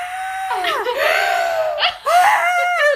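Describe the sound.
A voice imitates a long, high-pitched scream, sustained and wavering, breaks briefly for a breath, then resumes screaming at full loudness.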